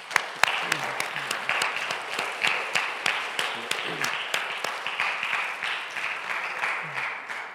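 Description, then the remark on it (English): A crowd breaks into sustained applause, many hands clapping together in a dense, steady wash that stays fairly loud for several seconds, with a few sharper claps standing out near the start. “can we give them a great big round of applause?”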